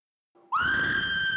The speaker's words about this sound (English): Screams, bringing children around corners, pressing teachers against windows, sending Joe, the caretaker, racing across the tarmac.